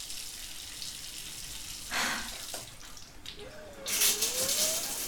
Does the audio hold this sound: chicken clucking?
no